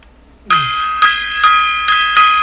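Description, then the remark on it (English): A small gong is struck five times in quick, slightly uneven succession, each hit a bright metallic clang whose shimmering ring carries over into the next, loud with no voices. “All right, gong time.”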